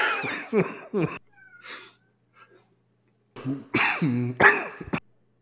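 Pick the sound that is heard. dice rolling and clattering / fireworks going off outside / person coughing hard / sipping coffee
person coughing hard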